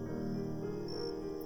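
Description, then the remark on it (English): Crickets chirp in a steady, high-pitched trill, faint, over a low rumbling outdoor background with no voices. “Out here, all you can hear are the crickets, treating us to an early overture of their evening orchestra.”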